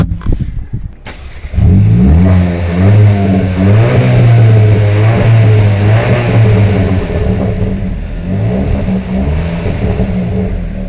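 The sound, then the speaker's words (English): A car engine cranks and catches after a brief pause, then revs loudly with rising and falling harmonic tones before settling into a steady, throaty idle. “And when you start this car up, have a listen to this.”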